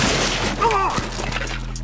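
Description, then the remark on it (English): A snack table shatters in a dense, loud burst of crashing and splintering noise that fills the whole moment, with a brief squealing tone partway through before it settles into clattering debris. “Brash on Bettis caused a snack table to shatter.”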